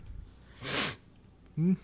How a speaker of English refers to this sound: Sorry, the sniff.